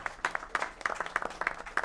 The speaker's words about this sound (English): So first of all, can we give a round of applause for everyone who showed up? Come on. Good job, guys. Really appreciate you coming out.